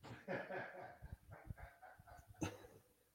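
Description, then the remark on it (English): A dog wanting to be let in barks several times in short, irregular bursts, sounding muffled, with a sharper bark near the end. “Hold on, I gotta let the dog in.”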